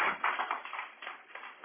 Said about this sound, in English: Give a clap of praise to the Lord.